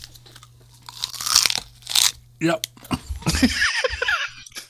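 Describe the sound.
Close, loud crunching of ice being bitten and chewed, several sharp crackly bursts in a row, with a brief spoken word between them.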